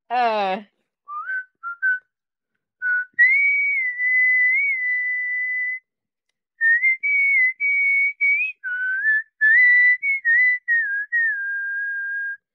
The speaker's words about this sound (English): Whistle any song that make you feel comfortable.